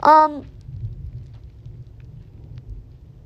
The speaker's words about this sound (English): Y'all, this thunder is scary. It, like, shakes the house.